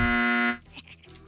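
A loud, harsh game show buzzer blares for about half a second with a flat, rasping tone during the radio call-in game Dead Guy in the Envelope, buzzing a caller's guess, then cuts off, leaving faint voices murmuring.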